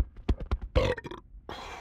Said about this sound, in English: I had a bubble in my throat because I got a burp.